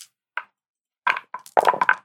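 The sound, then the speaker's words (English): Five dice rattle and clatter onto a hard surface: one sharp tap, a pause, then a quick run of bright, knocking clicks as the dice tumble and settle. “So I'm going to roll 5.”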